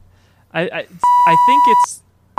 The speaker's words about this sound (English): It sounds less like a censorship beep and more like a voicemail warning. Beep. It sounds more like a warning. There's a tornado beep.